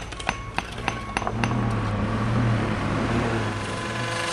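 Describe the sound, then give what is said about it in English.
Construction site noise on O and P Streets, where workers with hammers, shovels, circular saws and backhoes are putting the cobblestone streets and trolley tracks back together: a run of sharp metallic clanks and hammer knocks at the start, then a loud, steady droning machine hum with grinding texture carrying on underneath. “It's a cacophony of construction.”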